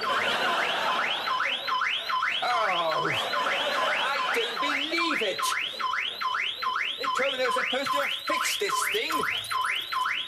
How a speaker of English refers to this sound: the owl that's seemingly getting ready to crap all over his car, and it does, followed by the car alarm going off.